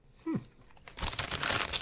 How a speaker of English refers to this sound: Let's do the popcorn. Okay. I'm just going to edit this out so you could just eat.